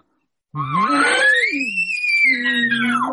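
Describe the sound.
A person imitating elk calls, doing cow sounds with a few little pants and a little growl: one loud, drawn-out cry that starts as a gruff, grunting growl and climbs into a high, sustained whistle before dropping back to a rough low tone.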